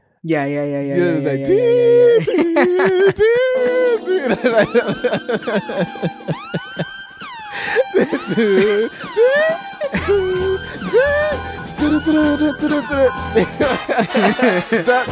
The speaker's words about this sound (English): Do you know what's funny? So when he was saying this, do you know the Kill Bill siren sound?